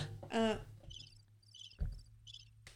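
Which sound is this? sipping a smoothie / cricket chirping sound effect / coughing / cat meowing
cricket chirping sound effect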